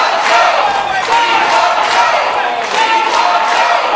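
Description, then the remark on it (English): About 50 people in a gymnasium scream the chant "We want Joe" together, a dense, continuous roar of many voices with rhythmic surges and a sustained shouted pitch throughout. “So you have this protester here saying, calling Joe out, and everyone, the 50 or so people in this gymnasium are screaming, "We want Joe," right?”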